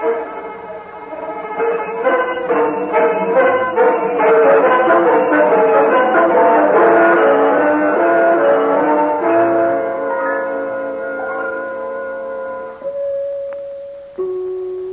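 Doorbell chimes at an undertaker's house ring over and over as the bell is pushed repeatedly, their bright tones overlapping into a loud, sustained melodic wash that gradually thins out, ending with a few lone lingering notes. No one speaks.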